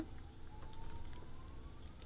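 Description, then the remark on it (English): A faint fire alarm in a building drones steadily in the background, going off for at least 20 minutes, a thin continuous tone that slowly rises in pitch, barely above a low rumbling hum with no talking. “I'm concerned that this whole time in the background there's been a fire alarm going off.”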